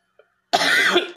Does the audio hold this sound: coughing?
yes